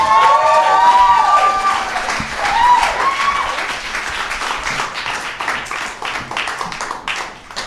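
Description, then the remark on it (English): An audience breaks into sustained, dense applause for a performer's premiere performance, many hands clapping at once, with a few shrill whistles near the start before the clapping eases slightly toward the end. “Ladies and gentlemen, please put your hands together.”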